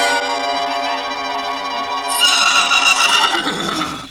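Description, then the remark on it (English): A loud horse whinny from six white horses with golden harness and red and blue ribbons in their manes rings out with a long harmonic cry, then breaks into a shrill, shaking neigh that trails off over about four seconds, with no talking. “Six white horses with golden harness and red and blue ribbons in their manes.”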